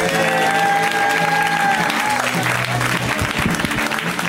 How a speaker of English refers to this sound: Just so you know, you guys didn't clap loud enough for Chicago, and I'm hurt.